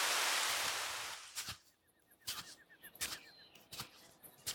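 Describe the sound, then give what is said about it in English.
A soft rushing swish fades into scattered, crackling rustles of something moving in tree branches, like leaves and twigs being disturbed, with a faint rapid high chirping in between. No one speaks. “It sounds like something is rustling in the branches.”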